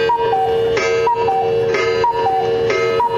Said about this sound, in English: That's a very German thing, by the way, cuckoo clocks. Why Germans decided cuckoo clocks was a thing. We like to tell time, and we like the little birds who come out and go tweet, tweet, tweet.